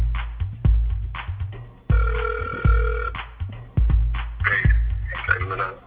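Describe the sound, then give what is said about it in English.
A phone line rings while waiting for an answer: a steady electronic ring tone lasting about a second, with fainter tones after it, over a heavy, regular thumping bass beat. “Here, let's see if he pick up the phone.”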